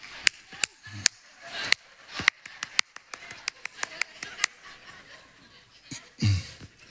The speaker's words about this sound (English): Not thunderous applause there now. That was like a golf clap, you know.